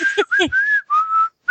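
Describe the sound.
A person whistles a short, bright melody up close, a few sustained notes joined by quick slides, with a brief voiced sound at the very start.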